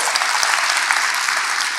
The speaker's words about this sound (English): Clap for Dallas right quick, man.